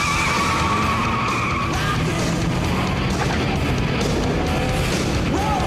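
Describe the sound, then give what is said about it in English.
In a film scene, a car peels away from a desert security checkpoint into a hail of bullets, with loud, sustained tire squeals, the high screech wavering over a constant roar of engine and road noise for several seconds; no one speaks. “And then they gun it into a hail of bullets.”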